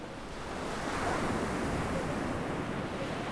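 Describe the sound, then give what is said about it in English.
Steady roar of ocean surf washing onto a beach at Assateague National Seashore in Maryland on a Monday in mid-August, swelling slightly after the first half second and then holding as a continuous rush with a touch of wind. “It's mid-August, and we decided to go to Assateague on a Monday, hoping for less traffic, both on the road and on the beach.”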